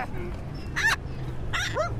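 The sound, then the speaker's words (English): A collie and a spaniel bark in two short, high-pitched bursts inside a van, with a parrot sitting on the steering wheel and a steady low rumble underneath. “You've got a collie dog and a spaniel and a parrot sitting on the steering wheel.”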